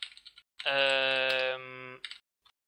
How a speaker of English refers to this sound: Sorry if you can hear me typing, I'm just trying to check when it actually came out.